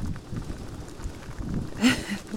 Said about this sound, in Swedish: Det blåser rätt hårt här. Ändå.